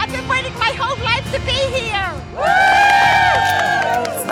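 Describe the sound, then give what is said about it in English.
An outdoor crowd at the Today show cheers and shouts on a bright Monday morning after the Super Bowl, overlapping voices building into a loud, sustained swell of high-pitched yells and whoops about halfway through. “What a great crowd out there on a nice, bright, shiny Monday morning.”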